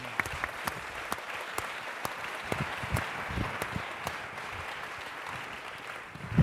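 A crowd applauds steadily, a dense wash of many hands clapping with a few sharper individual claps standing out, sustained at an even level throughout with no voices.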